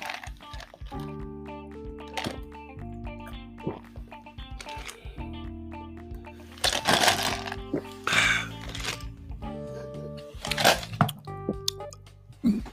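A few short, wet slurping sips from a drink, arriving in bursts over steady background music with sustained tones; no one speaks.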